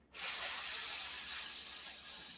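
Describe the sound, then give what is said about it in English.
A person holding their breath orally makes a sustained, steady hissing "sss" sound, imitating a snake, fairly loud for a couple of seconds without pause. “And once it's at the crown chakra, we're going to hold the breath and orally make the sound of an S, the serpent, the snake.”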